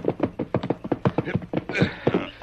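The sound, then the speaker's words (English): Horses' hooves clop in a quick, steady rhythm as riders rein the horses to a stop where a trail ends at a cabin, with a short, breathy snort or whinny near the end. “We'd better lead the horses from here.”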